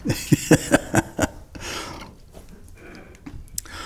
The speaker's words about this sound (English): Well, we all get to move chairs.